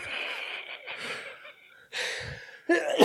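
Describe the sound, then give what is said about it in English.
Raspy, wheezing coughs and strained breaths come in three or four harsh bursts, with short gaps between them and no talking. “I got that old man wheeze cough now.”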